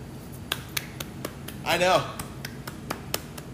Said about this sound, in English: I'm the only one clapping, but I don't have a soundboard for clapping effects yet.